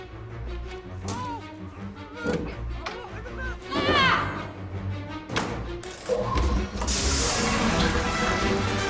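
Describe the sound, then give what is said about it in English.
Water rushes and sprays into a washing machine as it fills for a load of laundry, a steady hissing surge that grows louder toward the end, mixed with dull thumps and muffled voices. “Stuart is in a room filling with water.”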